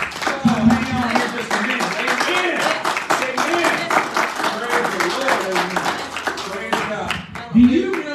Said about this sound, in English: Give this praise and worship team a great big hand clap. Amen. Praise God. Hallelujah.